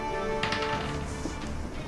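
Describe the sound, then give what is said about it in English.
A die tumbles across a tabletop in a short burst of quick, rattling clicks, then one last tap as it settles, rolled for a heal check and landing on 16. It is fairly quiet, with no one talking. “Okay, roll your heal check.”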